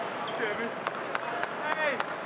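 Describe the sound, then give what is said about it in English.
During a game in an arena, Donovan claps his hands to egg the crowd on: five or six sharp, crisp claps in an even, steady rhythm, standing out over a continuous murmur of crowd voices. “Donovan clapping his hands. You can hear it egging the crowd on.”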